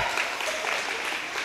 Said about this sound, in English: But I'm, no, oh my gosh, you do not need to clap.